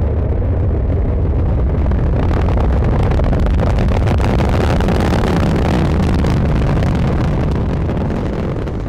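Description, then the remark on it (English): A rocket lifts off, its nine engines roaring continuously and loudly, a deep rumbling thunder with crackling texture that stays steady and powerful throughout as the ground shakes, with no voices. “And now you can hear the sound, this roaring of 9 engines.”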